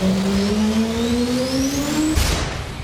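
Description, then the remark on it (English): A loud engine revs steadily upward in pitch for about two seconds, then breaks off into a rough, noisy burst as it winds down. No one speaks. “Fire up the prediction machine. Damn it. Who didn't change the oil?”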